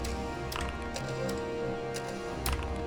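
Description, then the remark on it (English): A game timer clock ticks steadily with about 30 seconds left, sharp clicks arriving roughly every half second, clear over a dense, busy background bed with no voices. “It's at 1 hit point as the clock's at literally 30 seconds.”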